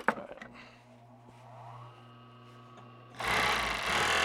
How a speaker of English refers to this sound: sits at an old sewing machine. He's making a scarf. What I'm doing, this is a coyote skin. This is a red coyote from probably Williamsburg, from Grand Traverse County.